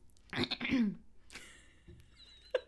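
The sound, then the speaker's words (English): A fairly loud throat clearing, one rough, gravelly burst lasting under a second, followed by softer breathy noises and a small click. “I don't know why I had to clear my throat like that.”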